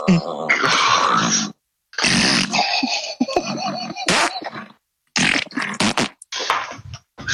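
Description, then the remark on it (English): A series of loud, close, sputtering fart noises in uneven bursts separated by short pauses, apparently made by a voice imitating farting, with growly, buzzing textures. “You have a minute's farting”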